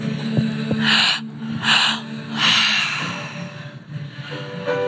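Heavy, forceful breathwork breaths drawn into the belly in rhythm, three loud airy inhales and exhales in quick succession, over a soft low musical drone.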